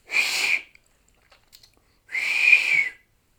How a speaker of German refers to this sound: Die Woche haben wir versucht, auf den Händen zu pfeifen.